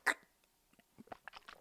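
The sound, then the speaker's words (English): Gatorade being sipped: one sharp, loud slurp, then a short run of softer wet mouth and swallowing sounds, with no talking. “That's sipping Gatorade.”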